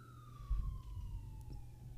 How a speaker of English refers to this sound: Well, there goes Ambulance. There you go.